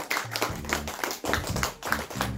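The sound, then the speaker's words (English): A class from St. Killian's in Cavan applauding themselves: a dense, steady patter of many hands clapping at once, fairly loud throughout the couple of seconds with a few sharper bursts, and no voices. “Let's give yourself a round of applause.”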